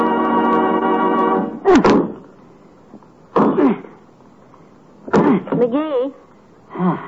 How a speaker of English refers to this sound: Why don't you keep chopping in the same place all the time? That tree looks like it's been chewed by a cross-eyed beaver.